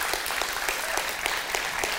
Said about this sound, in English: Thank you. Y'all can clap for them if you want while they're getting down.